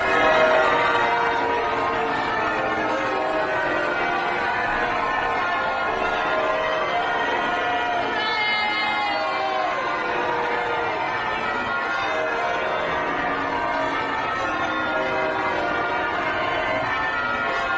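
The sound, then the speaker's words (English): A large crowd outside St. Paul's Cathedral boos loudly and steadily as a couple emerges, with scattered cheers and whistles mixed into the dense wall of voices, sustained at an even level throughout. “You can hear some cheers and plenty of booing in the crowd.”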